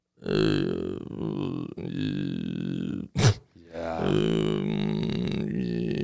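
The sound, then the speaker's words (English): A voice makes a deep, rumbling, drawn-out fart imitation, broken midway by a brief sharp burst, then resumes for another long, low, buzzing stretch. “It's almost like a didgeridoo. Yeah. But it's not. It's a Vin. And it's the only fart that actually wears a wife beater t-shirt”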